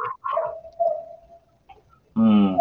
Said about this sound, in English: Who's got the barking dog? That's me. Oh, my God. Here at the ASPCA.